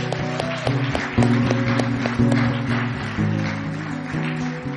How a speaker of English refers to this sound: Come on, give Jesus a hand clap.